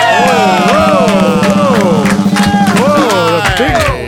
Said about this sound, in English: Big claps at the end. Now that there is a crowd pop, kid.